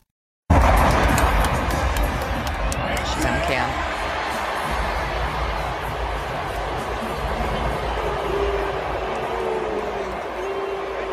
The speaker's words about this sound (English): She goes to an LA Rams, Dallas Cowboys game out there. And the giant jumbo cam found her. What a shock. And they booed her. They booed. Listen.